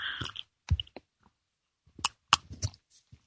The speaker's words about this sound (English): Time for me to sip a little tea here.